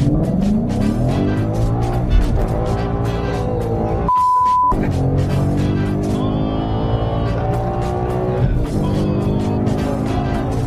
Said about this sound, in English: My brother Brian Collins tried to give me a heart attack in his Mustang race car.